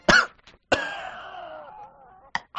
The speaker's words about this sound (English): Sorry, cough.